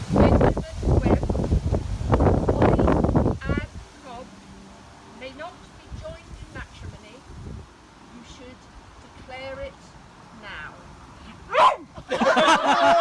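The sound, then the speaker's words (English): A dog barks in a rapid, loud burst of several sharp yaps at an outdoor wedding ceremony as the officiant asks whether anyone objects, then the scene goes quiet with faint chirps and murmurs before another short outburst near the end. “The dog has a gripe with the couple getting married.”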